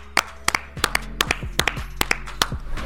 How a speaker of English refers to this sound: Clap it up.